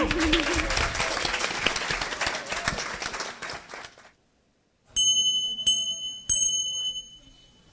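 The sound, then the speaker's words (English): Loud, dense audience applause for a panel of speakers runs for about four seconds, then cuts to silence before three bright, ringing chime strikes sound at a steady pace. “A round of applause for our panelists.”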